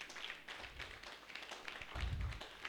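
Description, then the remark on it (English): An audience clapping for the Lord during a sermon, a dense, steady patter of overlapping hand claps with a few low thumps mixed in, continuing throughout with no one speaking. “I thought you'd give a clap of none to the Lord.”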